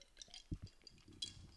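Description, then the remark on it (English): Someone drinks water from a glass: faint clinks of glass, a couple of soft low gulps, then another light clink as it is set down, all fairly quiet with no talking. “One second, let me take a drink of my water.”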